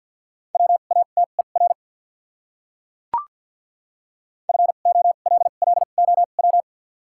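Morse code tones sent at 50 words per minute with doubled character spacing: a steady mid-pitched beep keyed into quick short and long pulses, sent in two bursts separated by a silent gap with a single soft click. No voices.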